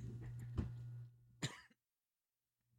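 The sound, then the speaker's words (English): A few harsh coughs, a short burst followed by one sharper hack, with a steady low hum underneath before the sound drops to near silence. “My gosh, this ear thing is really bad, and I'm coughing constantly.”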